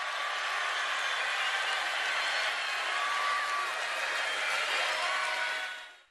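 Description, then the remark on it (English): A large arena crowd in West Virginia applauds and cheers during a Donald Trump speech in a steady, loud, unbroken roar of clapping for about six seconds before fading out abruptly at the end. “You know, folks, I did leave on a little bit of the crowd applause just to make clear that Donald Trump is wildly popular with people who supported him.”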